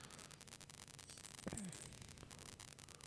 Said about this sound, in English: Yeah, there is a little bit of static on there. I'm not sure what's causing that, though